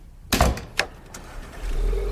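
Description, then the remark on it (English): A heavy door of a Bentley Continental Flying Spur 6.0 car shuts with a solid thud, followed by a couple of lighter clicks, then a low engine rumble settles in and steadies at the end. No one speaks. “Wow, nice car. Oh my god, that is a Bentley Continental Flying Spur 6.0!”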